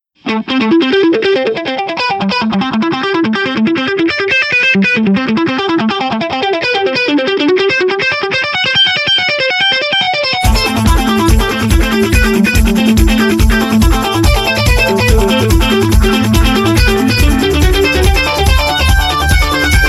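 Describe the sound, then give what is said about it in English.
Loud, distorted heavy metal electric guitar plays rapid echoing runs through a delay effect; about halfway in, a heavier, driving low chugging rhythm kicks in beneath the lead. No voices. “You know, heavy metal guitar etude using the using the Boss DD3.”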